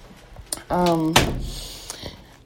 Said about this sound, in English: That was me closing the door, so there's no more interruptions.